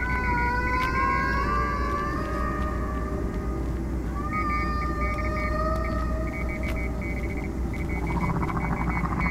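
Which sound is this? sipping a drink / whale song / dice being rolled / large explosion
whale song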